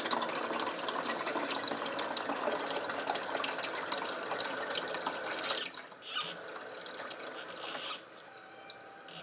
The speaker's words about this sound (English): I'm refilling my filter. My Brita water pitcher.